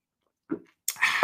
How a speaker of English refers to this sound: I mean, just let me have another sip of this cinnamon bun latte. It's probably freezing by now, but hey, it's going to be good.